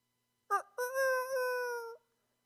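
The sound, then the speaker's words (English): A person imitates a rooster crow: one loud, strained, high-pitched vocal call with a short opening burst, then a long sustained note that wavers slightly and drops off at the end. “That was a rooster.”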